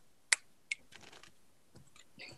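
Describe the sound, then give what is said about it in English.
Two sharp card snaps ring out, then papery riffling and soft flutters follow as a very old, much-used deck of cards is shuffled for a card reading, with no talking. “Audio shuffle there for you. Give them a shuffle.”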